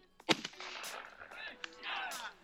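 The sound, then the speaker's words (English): A single loud, sharp rifle shot, fired while hunting at a big buck deer and hitting it, cracks out early, then trails into a rough, rumbling decay with scattered rustling and faint murmured voices afterward. “Oh, you hit him. Go get that one”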